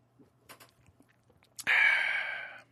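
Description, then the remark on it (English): Quiet wet mouth clicks and gulps of someone sipping and swallowing a San Diego beer, followed by a sudden loud, breathy exhale that fades over about a second. “Sip one for the boys. Cheers. Salud.”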